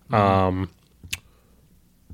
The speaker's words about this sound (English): Sorry, I had some notes and we're clicking through them.